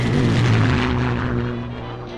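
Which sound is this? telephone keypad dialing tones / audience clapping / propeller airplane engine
propeller airplane engine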